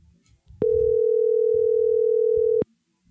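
A steady, loud telephone dial tone holds a single pitch for about two seconds, starting and stopping abruptly, with faint low murmuring before and after it, as a phone call is being placed.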